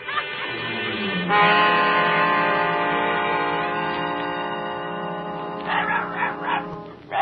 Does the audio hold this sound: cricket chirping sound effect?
no